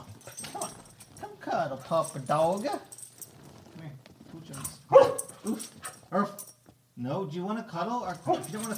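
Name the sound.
dog barking and whimpering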